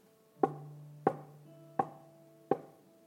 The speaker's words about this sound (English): And he knocks. And he says, just let me in. Just let me in.